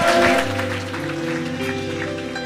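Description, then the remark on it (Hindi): An audience claps steadily throughout to welcome the Lord, a dense, continuous patter of many hands, while sustained musical tones hold underneath. “क्या आप खुदावन का ताली बजा के स्वागत करेंगे?”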